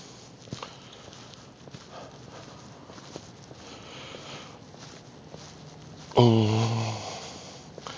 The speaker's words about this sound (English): Oh, the flag is slapping against the pole, making a weird noise. I think I'm a little jumpy.